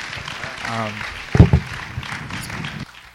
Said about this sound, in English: Will you guys please give him a round of applause? And he's going to go ahead and take a seat.